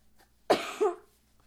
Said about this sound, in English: He can't get over this little cough. But it's not COVID. It's just a cough. It's just allergies messing with us this time of year, isn't it?